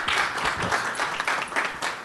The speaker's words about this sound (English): everybody, give them a round of applause. Welcome.